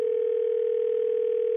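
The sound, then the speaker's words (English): A steady, unbroken telephone tone hums at even volume for the whole moment as a call goes out, clear with no voices. “I just hit ignore and then we'll call her back in a minute.”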